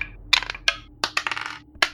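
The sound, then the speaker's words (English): A handful of dice, including six-sided dice rolled as hit dice during a short rest in a tabletop game, clatter across a hard surface in several quick bursts of sharp clicks and rattles, fairly loud, with brief pauses between tumbles. “Oh, dearie me, I can see ones, I can see fours and sixes.”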